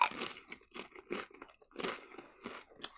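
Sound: crunchy munching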